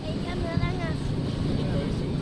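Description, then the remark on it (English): The whale-watching boat Porto Mia out on the Caribbean Sea off the Dominican Republic, its steady engine rumble mixed with constant wind and water wash, while faint voices of about 50 passengers searching for humpback whales drift through. “Some 50 visitors from around the world lean over the rail of the whale-watching boat Porto Mia.”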